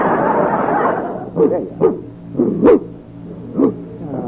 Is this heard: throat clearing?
no